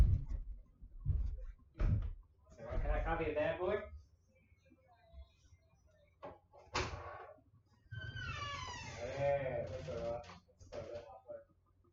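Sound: door being closed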